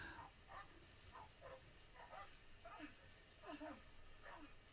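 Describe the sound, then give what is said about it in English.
Dogs bark in a steady string of short, overlapping yelps, muffled, over a constant low rumbling background with no one talking; in a film scene the dogs are sent after a man who swims across a lake. “And they sent the dogs.”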